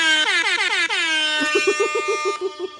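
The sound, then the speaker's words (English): A loud air horn blares alone, opening with a quick run of short rising honks and then holding one long, brassy blast that wavers and pulses before cutting off. “We need an air horn.”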